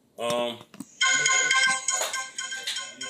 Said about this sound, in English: Shit, it might have been his phone.